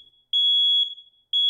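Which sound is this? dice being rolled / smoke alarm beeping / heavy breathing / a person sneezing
smoke alarm beeping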